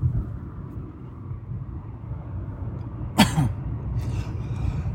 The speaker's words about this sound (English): Man, this cough is annoying.